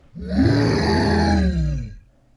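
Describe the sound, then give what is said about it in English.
A deep, rough roar from a pack of tree beasts with wooden teeth and glowing yellow eyes swells in and holds for nearly two seconds, loud and growling with a gravelly low rumble, echoing all around, then fades out. No one speaks. “And every branch reached out for Kai and the ninjas as the roar of a pack of tree beasts echoed all around them.”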